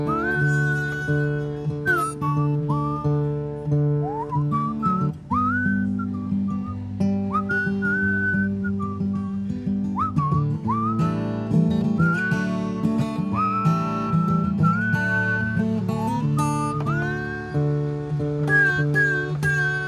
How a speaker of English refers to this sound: Down from the mountains, with this little song I've been whistling to myself.